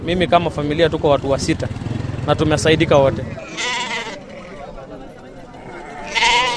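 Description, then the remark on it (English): Goats bleat loudly and repeatedly at a noisy livestock market in Kajiado county, Kenya, where goats collected by the county government are sold. Their wavering cries overlap amid crowd chatter and a low engine rumble in the background. “Goats are collected on a specific day by the county government of Kajiado, then sold at the market.”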